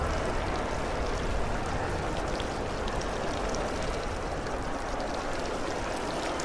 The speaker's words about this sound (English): At all times, we are aware of murmuring enveloping us, even the water in the rotunda's elliptical fountain merging with the general soundscape like another voice.